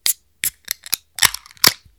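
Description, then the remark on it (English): A can of beer, one brewed with a new hop, being cracked open to pour into a glass: several sharp metallic clicks, then a brief fizzing hiss and a final crisp snap, all fairly loud with no voices. “Well, I'm excited for you to try this, because I've actually had one of these with the new hop already, but I want you to go ahead and crack it, and let's get it in the glass.”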